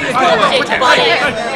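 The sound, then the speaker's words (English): Dense crowd chatter from people packed onto a busy stair, a double stream going up and down toward an office, many overlapping voices blending into a loud, steady hubbub with no single speaker standing out. “he pushed and pulled and butted until he got me through the crowd and right up to the steps which led to the office, where we wedged in as well as we could, and soon found ourselves in the office.”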